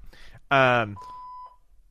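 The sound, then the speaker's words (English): A phone gives off electronic beeps on its own: a short, loud, buzzy chirp, then a steady single-pitched tone lasting about half a second before it cuts off, with nothing else around it. “Oh, ghost phone. Ghost phone.”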